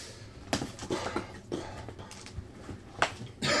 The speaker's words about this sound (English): Problem is, I coughed. I got a cough drop in my mouth, so I'm trying to avoid it.